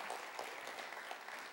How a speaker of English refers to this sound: We grew by 10%. Yeah, and you're even allowed to clap for that.